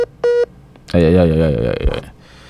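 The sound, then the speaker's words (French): A single short, loud electronic telephone tone beeps near the start as a call comes in, then a voice takes over with a sustained, wavering vocal sound for about a second. “je recevons un appel.”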